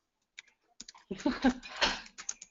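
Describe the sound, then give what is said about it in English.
Quick clicks of keyboard typing, a few scattered taps at first, then a denser, noisier burst of keystrokes mixed with background clatter, moderately loud. “I think there's a lot going on in the background. She's typing a question, maybe.”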